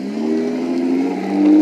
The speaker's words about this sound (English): And there's the car. See, like I said, I'm in traffic.